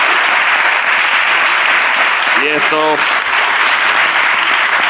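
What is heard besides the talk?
audience applause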